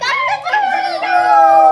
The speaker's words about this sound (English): The rooster was very excited. He cried, "Listen to me, cock-a-doodle-doo."